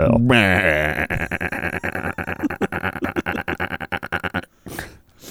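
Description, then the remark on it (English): A voice imitates a sheep's baa: one loud, drawn-out bleat that breaks into a rapid stuttering flutter for about four seconds, then a brief burst of noise. “The sheep says.”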